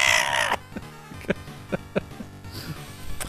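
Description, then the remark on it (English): A Ghostbusters pinball machine at a wedding reception lets out a shrill, piercing scream for about half a second, then falls into a run of punchy electronic thumps and bleeps in an uneven rhythm. “surprised me with a Ghostbusters pinball machine, and that apparently lets out a blood-curdling scream every few minutes.”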